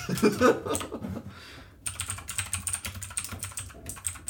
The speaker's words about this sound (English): Are you ready for this? When I hit this enter on the keyboard, you're batting up with a 1.5 out of 5.